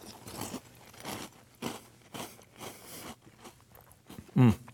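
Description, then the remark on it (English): Crunchy chewing of Crunch Berries cereal with milk, a steady rhythm of crisp, wet crunches about twice a second, ending with one louder bite. “This is the healthy part of the meal, of course. You know, some milk, some solid.”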